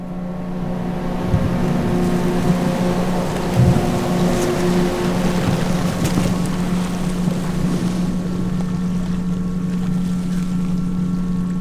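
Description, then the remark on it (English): A boat's engine drones steadily with a low, humming tone while water and wind rush continuously around it, heard on board a boat carrying about 80 women scientists, with no one speaking. “So I was on board this fantastic HB leadership boat with approximately 80 science women”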